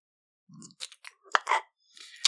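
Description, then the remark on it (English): Wet slurping noises made with the mouth, a voice imitating slurping in several short, crackly bursts with brief pauses between them, fairly quiet and with no talking. “Then you're kind of hearing a slurping.”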